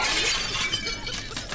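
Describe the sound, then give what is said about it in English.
A Roman cameo glass vase shatters loudly, a bright crash followed by a spray of tinkling shards that rattle on for over a second. No one speaks. “That's a very valuable Roman cameo glass vase. It's priceless.”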